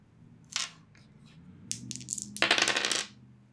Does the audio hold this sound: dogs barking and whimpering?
no